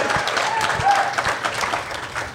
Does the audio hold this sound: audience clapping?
yes